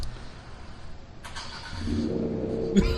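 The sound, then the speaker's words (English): A car engine with an aftermarket exhaust revs up, its deep throaty rumble swelling louder through the second half before a brief sharp crackle near the end; no one speaks. “That's what it sounds like? That's with a custom different exhaust in it.”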